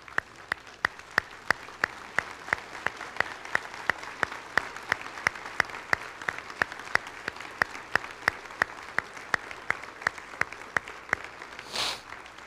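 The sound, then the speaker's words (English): A standing crowd applauds for over twelve seconds in honor of a pastor and his ministry, dense clapping with sharp individual claps standing out at a fairly even pace, staying loud throughout with no one speaking. “In fact, if you will, let's just give one more round of applause and let's stand to just honor them.”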